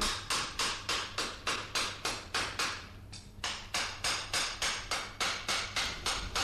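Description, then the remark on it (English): Steady, rhythmic hammer blows ring out in a forge in the heart of London, about two or three sharp metallic strikes per second, with a brief pause midway and a low hum underneath. No one speaks. “Do you find it unusual now, Michael, having grown up in a little townland in County Clare and worked in a forge, to find yourself now here, years later, walking in a forge in the heart of London?”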